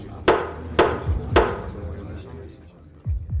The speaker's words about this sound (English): And at hearing the sound of his name being called, Stephen Kirkman, to the stand, pushes open the strong oak doors to the courtroom.